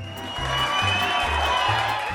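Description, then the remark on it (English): A dense, steady roar of crowd cheering holds at an even loudness for about two seconds, with a low droning tone pulsing underneath. No one speaks. “And the sound of our cheering fans means it's time for a little bubbly bibbly talk.”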